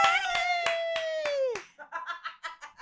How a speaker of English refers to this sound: Hold on, let me clap for you, because we've all been listening to me talk about it so much that I was like, I don't want to talk about squirting anymore.